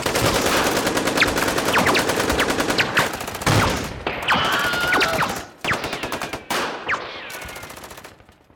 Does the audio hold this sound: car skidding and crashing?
no